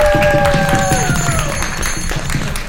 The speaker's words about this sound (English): All right, let's give our seance performers a round of applause.